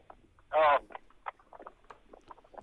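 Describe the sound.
A single short, very loud engine rev from a vehicle with a broken exhaust, a harsh, blatting exhaust roar, quickly dropping away as people start talking over a phone-like line.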